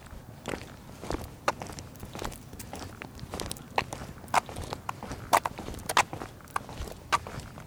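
Steady footsteps crunch along at a walking pace, a dozen or so distinct steps with a slightly gritty texture over a quiet outdoor background, no one speaking, recorded with omnidirectional microphones.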